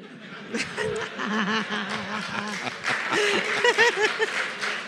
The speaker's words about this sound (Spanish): Ahí aplaudieron solo los hombres.